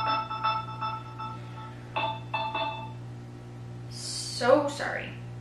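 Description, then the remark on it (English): A mobile phone vibrates in short buzzing bursts, a rattling pulse pattern that repeats a few times over a low steady hum, followed by a brief moment of someone speaking. “So sorry. We are on vibrate.”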